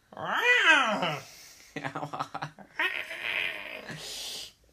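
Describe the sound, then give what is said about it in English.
A person voices a drawn-out, rising-and-falling meow-like wail, followed by a few breathy, raspy vocal sounds and a hissy yowl, fairly loud. “Yeah, are you doing a cat call, or right.”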